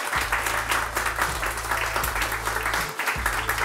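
An audience applauds a discussion panel, many hands clapping in a dense, continuous patter that stays loud throughout, with a low steady hum underneath.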